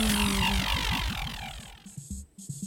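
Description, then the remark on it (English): A steady, droning bee buzz that wavers rhythmically in pitch, then breaks into a few short stuttering bursts toward the end. It's loud and heard alone, without speech. “Perhaps I'll be a buzzing bee who guards the hive.”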